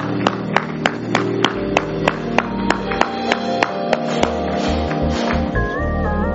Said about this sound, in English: Let's give the Lord a hand clap of thanksgiving.